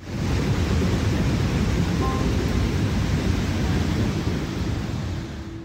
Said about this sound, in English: Entire villages have been washed away by the floodwaters, and officials say nearly 1 million homes have been damaged or destroyed. This is what a flash flood sounds like.